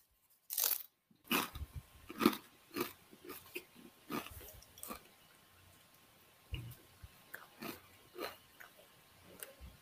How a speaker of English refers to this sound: He has taken a one-chip challenge. That is him crunching.